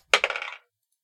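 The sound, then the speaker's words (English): Dice clatter onto a hard tabletop for a dexterity saving throw, with a sharp initial hit, then a quick run of rattling bounces that fade within half a second. It's fairly loud, with no voices. “Put that dice away.”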